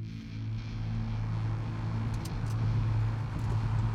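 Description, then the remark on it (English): A steady engine rumble of a pickup truck driving along a mountain road, with low droning tones and road noise holding constant throughout, no voices present. “Wesley Sherman Tyne rolled down the window of his pickup truck and took in the crisp mountain air.”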